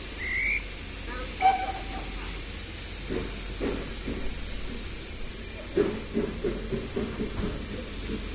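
A couple of short, shrill whistle blasts sound beside a steam train about to depart, with a hissing background, followed by irregular thuds and clunks of train windows being shut, with faint voices.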